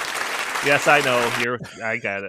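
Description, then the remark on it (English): A looped applause sound effect plays steadily beneath a man's talking voice, then cuts off abruptly, leaving only his speech. “I'm doing good, except for I forgot to hit the don't loop the applause sound effect in there.”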